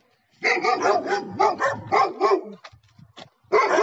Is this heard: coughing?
no